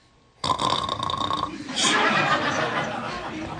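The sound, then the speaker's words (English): A voice imitates snoring with a loud, rough, guttural rasp that starts abruptly, then swells into a longer, noisier drawn-out snort lasting a few seconds. “I'm like, you're snoring.”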